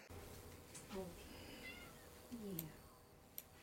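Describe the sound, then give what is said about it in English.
A cat meows twice, a short mew followed by a longer drawn-out meow a second later, fairly soft against a low background hiss with a few faint clicks. “Meow, meow.”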